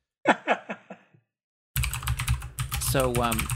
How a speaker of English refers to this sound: You're just going to hear my mechanical keyboard in the background. I'll edit that out.